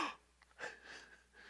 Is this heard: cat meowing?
no